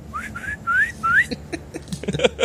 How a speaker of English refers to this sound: Can you like whistle for them and tell them to come down here?